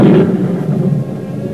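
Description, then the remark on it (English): A loud, deep rumble of thunder from an approaching storm rolls steadily for a moment, heavy in the low end, with no voices over it. “There is a storm coming.”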